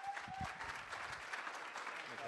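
A crowd breaks into steady applause welcoming a speaker, a vegan activist about to talk on vegan activism, a dense, continuous wash of clapping with a few cheers and a brief whistle at the start, holding at an even level throughout.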